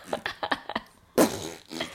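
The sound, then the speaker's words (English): A voice imitates fart noises: a quick run of short sputtering pops followed by a louder, longer raspberry blast and a softer trailing one, with no talking. “You do the poot and the boom.”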